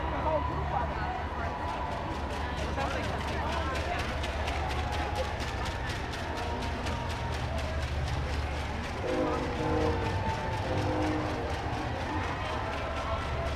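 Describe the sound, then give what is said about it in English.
A dense protest crowd within view of the Washington Monument roars steadily, with many overlapping voices blending into a loud wash and a fast, regular pulsing beat running through the whole stretch. “I have never been in a crowd like this before.”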